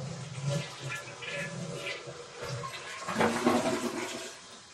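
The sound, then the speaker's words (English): A toilet flushes, a broad rushing, gurgling whoosh of water that swells in the middle and keeps draining, with faint voices murmuring underneath. “It's gonna flush through the middle of the recording.”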